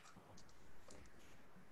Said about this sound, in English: I get five dice. Okay, so William, you can roll for that